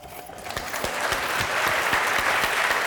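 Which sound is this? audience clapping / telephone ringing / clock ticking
audience clapping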